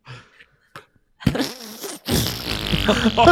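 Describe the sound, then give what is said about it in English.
Someone loudly mimics with their mouth the sound of a cat taking a loud shit, like a big fart: a short buzzy burst, a brief pause, then a longer, rougher sputtering blast, after a few faint quiet sounds. “like a big fart.”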